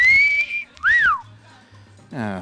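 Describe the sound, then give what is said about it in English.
A person whistles two short notes, first a steady high tone and then a quick rising-and-falling swoop, followed by a brief burst of voice at the end. “Maybe you could just whistle to my, you know, to maybe acknowledge my acknowledgement.”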